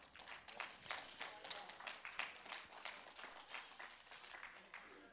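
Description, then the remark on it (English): A church audience claps steadily for several seconds, applauding the Lord, a dense, continuous patter of many hands with a few voices murmuring underneath, moderately loud. “Look at your neighbor and say, you are loved, and applaud the Lord for that.”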